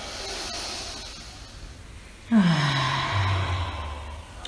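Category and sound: human body sound, slow deep exhale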